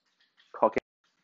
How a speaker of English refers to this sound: can you drink water any louder?